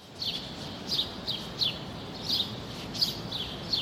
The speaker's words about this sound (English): Yeah, you hear all the birds chirping and stuff because it's daytime. It's like just becoming daylight.